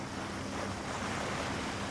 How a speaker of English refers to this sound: That's one of the whirlpools, spinning around and around and around.